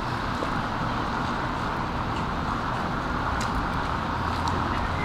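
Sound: car driving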